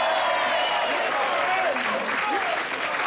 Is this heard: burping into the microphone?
no